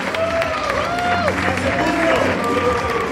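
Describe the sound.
An audience claps steadily throughout, a dense, loud wash of hand claps with rising and falling whistles or cheering voices weaving over the top.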